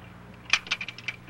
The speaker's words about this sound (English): somebody's coming in the front door.